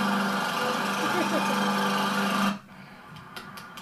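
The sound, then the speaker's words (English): A lawnmower engine, being whipped around inside a library by Supreme Patty, roars with a loud, steady droning hum for a couple of seconds, then cuts off abruptly, leaving a much quieter background with a few faint clicks. “Right now, Supreme Patty's got a lawnmower, and he's in the library right now, whipping the lawnmower around the library.”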